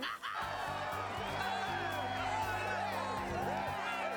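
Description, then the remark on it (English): A crowd cheers and whoops loudly and continuously, many voices overlapping in excited shouts and high yells for about four seconds. “We need the perfect cheer.”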